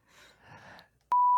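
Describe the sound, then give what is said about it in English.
A soft, breathy vocal groan fades out, then a loud, steady censor bleep from a mixer's bleep button cuts in abruptly and holds a single pure tone until the end. “It's just, I got a little mixer thing with a bleep button.”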